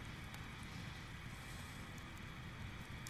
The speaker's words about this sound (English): The furnace is on in the house. I hear that.